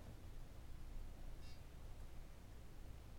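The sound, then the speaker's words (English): A plugged-in braille notetaker powers up after its power button is pressed and held, giving a single short, high-pitched beep midway through, fairly faint against a steady background hiss, with no one speaking. “So that's the unit powering up. Oh, it beeped it.”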